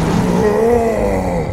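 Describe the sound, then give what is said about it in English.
A loud, sustained yell from a single voice lasting over a second and a half, held at a low, strained pitch that swells slightly and then drops off, like a voice acting out a mighty roar. “And you see him grow frustrated as all of the energy pulses within him, and he lets out a mighty yell.”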